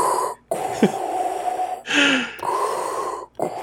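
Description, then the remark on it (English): A voice imitates Darth Vader's heavy mechanical respirator breathing, with a few long hissing inhales and exhales separated by brief pauses, fairly loud with no words spoken. “It's just him breathing.”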